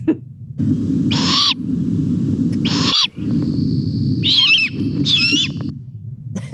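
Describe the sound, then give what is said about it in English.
A young bird gives four harsh, raspy calls in a loose sequence, each a wheezy screech, over a steady low rumble of background noise. “It is a bird, yeah.”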